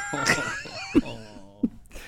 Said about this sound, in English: Coughing's still a little heavy.